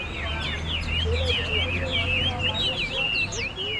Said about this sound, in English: And some of the cages are covered with white cotton sheets. The birds are very territorial, I'm told. When they see each other, they fight. Otherwise, they sing.